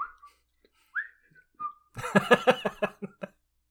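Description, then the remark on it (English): A person with a shovel slung over the shoulder whistles a few short, clear notes of the Colonel Bogey March, the theme from The Bridge on the River Kwai, then breaks into a brief burst of laughter. “slings the shovel over his shoulder and starts whistling.”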